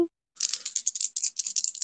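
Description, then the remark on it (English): Dice rattle and clatter in a rapid, irregular burst of bright, clicking hits for about a second and a half, with no voices. “I feel like rolling the dice for you.”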